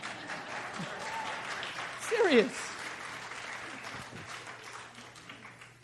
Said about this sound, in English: Oh, yes, it is Mother's Day. You go, Ruth. You go, Sojourner Truth. You women should be clapping.